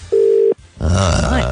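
A loud, steady ringback tone plays once for about half a second, the hum of an outgoing phone call ringing, then a brief pause before someone starts talking.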